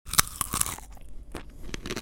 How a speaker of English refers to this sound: So I'm going to try one now on podcast, and let's see what it's like. They're very crunchy, so you'll get some good ASMR. Yeah, this is going to be good, this.